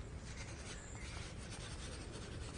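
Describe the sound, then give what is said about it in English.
A pencil scratches steadily across paper as someone makes a note, a continuous soft rasping of writing strokes with no talking, quiet but filling the whole moment. “May I just make a note of it? Would you like a pencil?”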